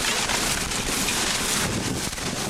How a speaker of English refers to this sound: It's absolutely downpouring. I don't know if you heard that, but the storm just blew their pickup's back window out.